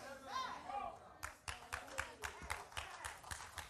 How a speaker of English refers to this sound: Only about a third of you not clapping after. You don't know how to react to that, do you?